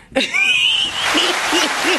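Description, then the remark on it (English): A crowd suddenly bursts into loud, sustained clapping, with a sharp rising whistle riding over the dense patter and a few cheering voices underneath. “You should have been clapping.”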